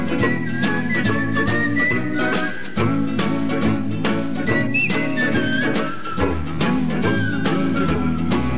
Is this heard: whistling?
yes